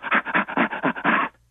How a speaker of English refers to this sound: I'll give you an example of chimpanzee laughter, for example.